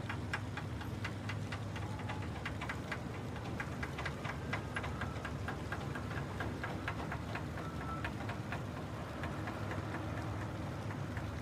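Busy fishing harbour ambience with boat engines idling, boats being repaired and painted and nets unwound: a steady low rumble runs throughout, overlaid by a fast, regular knocking clatter. No one speaks.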